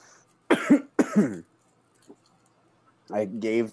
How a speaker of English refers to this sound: Jesus Christ, I'm sorry for coughing so much.